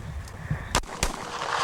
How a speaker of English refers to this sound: This is him having a gunfight with his neighbor on his farm, and like no one gets hurt or anything, but just listen to this.